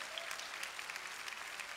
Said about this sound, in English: Come on, clap your hands and praise God.